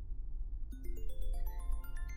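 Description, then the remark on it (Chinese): A mobile phone rings with an incoming call from a woman's husband, a bright electronic melody of stepped notes climbing in pitch. It starts after a short stretch of low rumble and plays steadily, with no voices. “我老公的电话，怎么办？”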